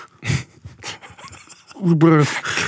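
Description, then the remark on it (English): Rapid, breathy panting right up against the microphone, a quick series of loud huffing breaths, with a short voiced sound near the end. “Stop breathing on me. Hey, little boy. Stop fucking breathing on me.”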